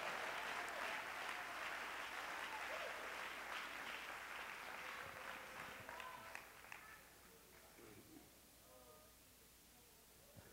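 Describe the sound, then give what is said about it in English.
An audience claps hands to the Lord in praise of God, in sustained, dense applause that gradually thins and fades over about seven seconds, with a few scattered voices emerging as it dies down. “Let's clap our hands to the Lord and give God praise.”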